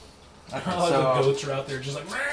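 A goat outside bleats in a long, wavering, tremulous cry lasting about two seconds. Fairly loud, with no talking over it.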